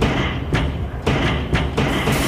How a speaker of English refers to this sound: Step inside, step inside, you beautiful people. And be careful, as the doors are now closing behind you.